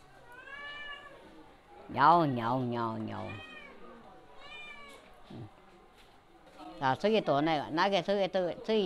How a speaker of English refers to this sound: Grandma has two cats. One has just given birth to a kitten recently. Now the mother cat is taking her kitten to the nest to nurse.